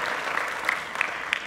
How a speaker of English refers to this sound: Let's give Jesus a big clap for that.